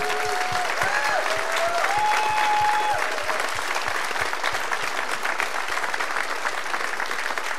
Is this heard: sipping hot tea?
no